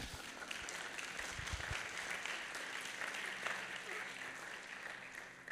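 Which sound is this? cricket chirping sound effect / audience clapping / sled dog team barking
audience clapping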